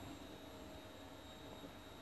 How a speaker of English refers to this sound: Yep, there is hoovering in the background. I do apologise if you can't hear me. Because obviously my device can pick up background sounds.